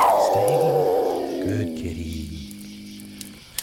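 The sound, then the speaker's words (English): A big wild cat lets out a loud, deep growling roar that slides downward in pitch, then breaks into several low, rumbling growls that fade out, with a small click at the end. “Whoa. Stay right there, kitty.”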